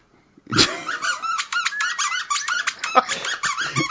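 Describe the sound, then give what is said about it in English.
A dog, Stormy, chews a little milk cow toy with a squeaker in it, producing a rapid, continuous stream of high-pitched squeaks with some low snuffling and growl-like sounds underneath. “Yeah, that is Stormy with his little milk cow that's got a squeaky in it that I wish he would pull it out.”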